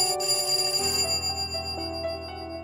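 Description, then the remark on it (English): A doorbell chimes: a bright higher tone gives way to a lower one that rings on steadily, with no one speaking. Dr. Baker and a policeman ring the bell at the door of the house to arrest Mary Mallon. “Two policemen were carefully positioned so that Mary couldn't escape, and another accompanied Dr. Baker to the door. They rang the bell.”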